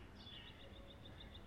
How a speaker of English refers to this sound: And it's here that our nightingale comes in. But you've got to be paying attention. They couldn't record things for very long in those days. It's a very short snippet of singing nightingale.